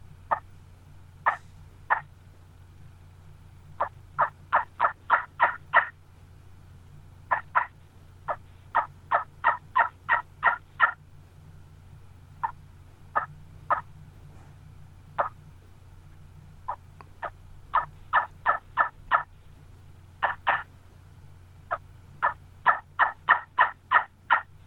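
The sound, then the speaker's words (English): A homemade wingbone turkey call made from old gobbler bones is played, yelping in quick bursts of three to eight sharp, high-pitched notes, clear, separated by brief pauses over a low steady hum, with no talking. “this is the first one that I built. And I'll tell you, it's strictly out of old gobbler bones, but I think it's got a pretty good tone to it.”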